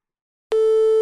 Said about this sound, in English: I think we can determine now that the clapping and all of that isn't the problem. The beeping is also not a problem.